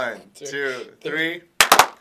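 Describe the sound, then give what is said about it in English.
After a few spoken words, a quick burst of three sharp, loud hand claps lands almost together but slightly out of sync, as two people try to clap at the same time. “And we were just like, we thought we could clap at the same time.”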